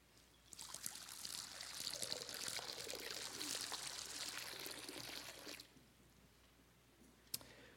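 Water pours steadily into a baptismal font during a baptism for about five seconds, a bright splashing trickle that then stops, leaving quiet room tone and a single small click near the end.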